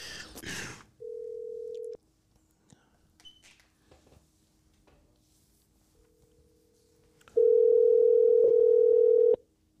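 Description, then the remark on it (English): An outgoing phone call ringing: a steady mid-pitched electronic tone sounds for about a second, pauses in near silence, then returns as a longer, louder ring lasting about two seconds. “Imagine he doesn't pick up.”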